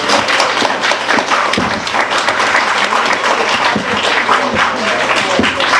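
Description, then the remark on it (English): An audience at a book reading at Skylight Books applauds steadily for about six seconds, a dense, loud wash of many hands clapping at once with a few sharper individual claps standing out. “Let's please give a warm round of applause to Planaria Price.”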